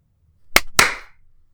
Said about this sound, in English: All right, when do you want to clap? Okay, yes. Back to the clapping.